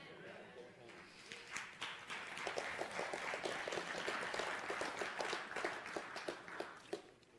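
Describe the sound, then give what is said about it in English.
A crowd applauds with scattered, uneven clapping that never fully builds, sounding lukewarm, a half-hearted clap, with a murmur of voices underneath the claps. “That was kind of a halfway clap, but I'm thankful that God.”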